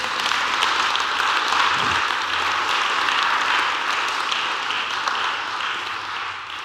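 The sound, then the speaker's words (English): An audience applauds that many people found Christ, in a dense, steady wash of many hands clapping together, holding strong for several seconds before easing off slightly at the end. “I can tell, by the way, you're all bursting to applaud that many people found Christ, so you might as well go for it now.”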